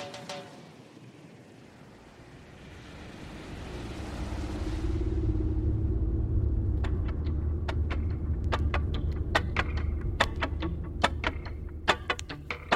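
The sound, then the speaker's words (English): Steady low rumble of a car cruising along the highway over the 7 Mile Bridge out of Marathon in the Keys, toward Key West, swelling louder after a few seconds, with a series of sharp ticking clicks in the second half. No one speaks. “After a peaceful drive over the 7 mile bridge out of Marathon, surrounded by nothing but the cool turquoise waters as far as you can see, we'll cross the last few islands of our trip until finally we find ourselves on the shores of Key West,”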